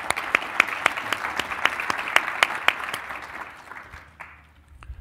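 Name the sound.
audience applause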